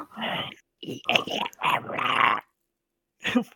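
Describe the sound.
A person imitates a pug's snorting, wheezy growl in several rough, breathy bursts, with a short pause before one last snort; fairly loud.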